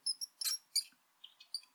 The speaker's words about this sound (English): And when I try and catch it, a mouse runs under my bed.